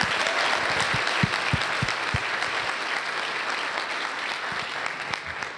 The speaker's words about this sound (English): And we're going to continue that this morning, so yeah, let's clap for them one more time as they're getting out.